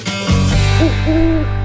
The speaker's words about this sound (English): The great horned owl, today's Talking Birds, featured feathered friend.